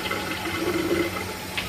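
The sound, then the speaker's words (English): Hot water pours steadily from a sink faucet, run to get warm water for a recipe, a continuous rushing splash with no speech, ending in a brief louder burst. “Now, be careful with your sink, because our sink, we achieve scalding hot water in seconds.”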